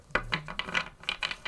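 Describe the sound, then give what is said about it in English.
Tarot cards settling into a deck: a quick run of about seven soft, papery rasps and flicks, fairly quiet and unevenly spaced, with no one talking. “Them, like, settling into the deck.”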